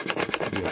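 A harsh, rasping noise like sawing, with quick repeated strokes in an uneven rhythm, fairly loud and continuous for under a second with no voices.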